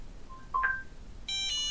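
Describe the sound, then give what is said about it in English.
A Shark robot vacuum's stranded alert chime as it is lifted into the air: two soft, brief electronic blips, then a brighter, sustained multi-note tone that shifts pitch slightly. No one speaks. “As you can hear, it's chiming. So it's the help me, I'm stranded chime.”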